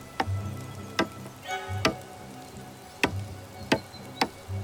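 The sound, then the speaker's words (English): Sharp, hollow knocks of wood on a tree ring out about six times at uneven intervals, each crisp and short, in snowy deep woods along a mountain, over a quiet low background hum with no voices. “I heard a click of wood on a tree to the left of me, which was quickly answered by a sound to the right.”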